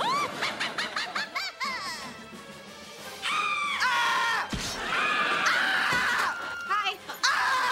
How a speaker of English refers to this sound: And, like, who, no human reacts to horror movies that way, just, like, full shoveling popcorn into your mouth and also screaming at the same time?